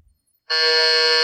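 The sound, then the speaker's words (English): After a brief silence, a quiz buzzer from the Buzzer App on a phone blares loud and steady with a harsh, harmonic-rich electronic tone, holding constant for under a second before cutting off abruptly. “is your buzz changing every time? It's eight options, mate. This app is amazing.”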